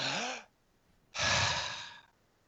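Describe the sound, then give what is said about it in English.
A deep breath drawn in, a short pause, then a longer, fuller breath pushed out, fairly loud, with a faint voiced edge on the inhale. No talking. “So I spent about 5 months out of the year unable to do this.”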